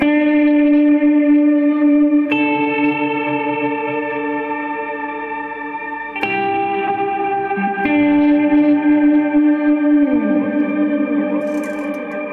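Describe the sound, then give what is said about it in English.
An electric guitar played through the ice delay setting of a Timeline pedal, holding long sustained chords that shift a few times before sliding downward, with glassy, shimmering trails ringing out loud and alone. “That trail is really cool. I think it's the ice setting on the Timeline, but I really like that because it doesn't step too much on the actual note.”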